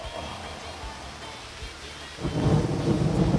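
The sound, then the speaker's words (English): Steady rain hisses outside, then a deep roll of thunder swells in partway through and keeps rumbling heavily to the end, with no voices. “It's raining outside. Get thunder and lightning.”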